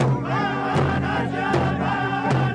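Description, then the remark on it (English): Slow, steady drumbeats thump about once every three-quarters of a second while a loud crowd of the Standing Rock Sioux and thousands of others gathered to stop the Dakota Access Pipeline cheers and whoops continuously in victory, voices rising and wavering over the beat. “Drumbeats, cheers, and tears. The sound of victory for the Standing Rock Sioux and thousands of others gathered to stop the Dakota Access Pipeline.”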